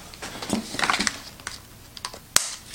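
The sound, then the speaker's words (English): Someone opens the product box of a Zoku kitchen gadget, with a run of quick cardboard clicks, scrapes and rustles, then a sharper snap near the end. No one speaks. “All right, so let's open it up, see what's inside.”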